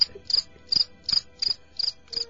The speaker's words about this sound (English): A little quick with the crickets there, Tommy.